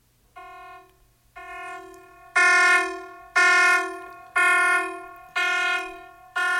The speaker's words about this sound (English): Oh, siren sound. That means it's time for the optional enrichment assignment portion of the podcast.